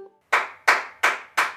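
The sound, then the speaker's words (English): Four sharp hand claps in a steady, even rhythm, each one crisp and bright with a quick decay, with no voices alongside. The claps follow the rhythm of the phrase "skillet cornbread" in a game of Clap It Back. “For example, if I say, skillet cornbread, you would clap.”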